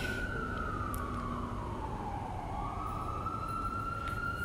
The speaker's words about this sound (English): Ambulance.